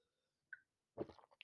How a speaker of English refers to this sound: Quick sip of water.